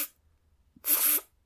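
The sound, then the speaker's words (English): A single short, buzzy mouth raspberry, a squeaky imitation of a duck's fart made with the mouth very small while breathing in quickly, lasting under half a second with a faint click before it and silence around it. “That's a duck's fart.”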